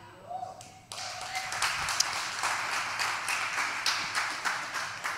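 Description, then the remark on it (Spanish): Audience applause bursts in after a brief moment of voice and continues as a dense, steady wash of many hands clapping, holding loud and even until the end. “Necesitaba el aplausito porque...”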